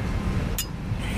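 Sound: coffee cups clinking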